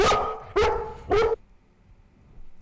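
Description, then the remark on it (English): A dog, Huey, barks three times in a radio studio in quick, evenly spaced succession, each bark loud, sharp and mid-pitched, followed by near silence with only faint background noise. “So, does your dog shed?”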